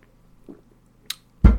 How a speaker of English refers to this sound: I'm going to have a sip right now. You should grab your libation and have a sip with me. Toast. Here we go.